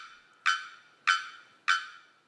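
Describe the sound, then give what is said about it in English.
A male bearded bellbird, nearly a foot long, sings from within the tree canopy of a tropical forest in Trinidad: three loud, explosive clanging notes at a steady, even pace, each ringing briefly and fading before the next. No voices. “In the tropical forest of Trinidad, a male bearded bellbird sings from within the tree canopy.”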